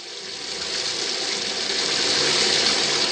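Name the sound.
shower water running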